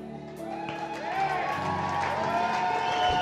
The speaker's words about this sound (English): He's loving this. Come on, keep clapping. Let's get him down here.